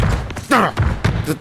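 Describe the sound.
A few dull, heavy thuds land in quick succession as the head henchman of the Villain Society forces a locked door, mixed with a strained voiced grunt.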